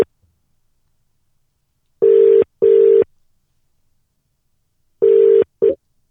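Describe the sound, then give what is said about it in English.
A telephone ringback tone heard while calling St. Nicholas: two double-pulse rings of a steady electronic tone, separated by silence, clear with no voices. “when Tim works out how to utilize his phone, we've got St. Nicholas on the phone”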